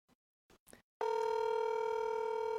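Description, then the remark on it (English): A few brief clicks are followed by a steady, loud electronic phone tone that holds without a break, a call ringing through to the speaker's mother in Canada, where it is 7 a.m. No one speaks. “I'm going to call my mom, see if she might wake up.”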